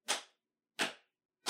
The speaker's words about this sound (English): Between me clapping, it's that space that allows for the impact for you to differentiate that I'm clapping, right?